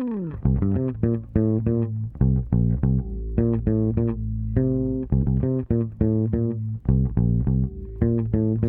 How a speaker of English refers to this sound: Here's that supremely funky keyboard part. And of course, we've got to listen to that bass part.